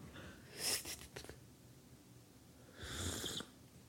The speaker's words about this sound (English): Such a loud little slurp we got going on there.